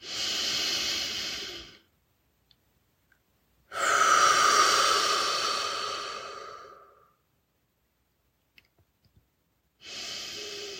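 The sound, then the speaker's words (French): Slow, deep breaths drawn in through the nose and pushed out through the mouth, airy, with a long exhale in the middle and quiet pauses between. No one speaks. “Prenez quelques respirations profondes par le nez et expirez par la bouche et laissez-vous détendre et ressentir le calme.”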